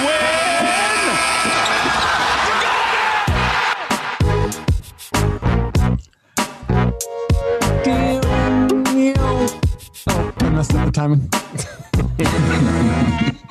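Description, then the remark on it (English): A short Raptors basketball team music sting built around a basketball bouncing: a dense, bright musical swell gives way to rhythmic thumps of a dribbled ball layered with punchy beats and tonal stabs, loud throughout. “But Matt, whatever you got, give me some kind of Raptor sting.”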